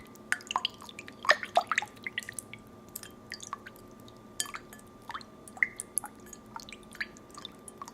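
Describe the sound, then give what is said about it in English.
Water drips and plinks irregularly, fairly quiet, with a cluster of quick splashy droplets early on and then scattered single drops over a faint steady hum. No one speaks. “Okay, so for this next one, I needed to go get some water.”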